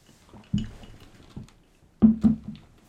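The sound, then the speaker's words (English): Crunchy chewing on a cough drop, a few irregular bursts of grinding and crackling, the loudest pair near the end, with no talking. “I'm chewing a goddamn cough drop.”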